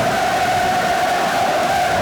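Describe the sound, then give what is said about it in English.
A dense, steady roar of a football stadium crowd, a continuous wash of many voices at constant loudness with a faint sustained tone running through it, no individual words standing out. “The crowd noise here.”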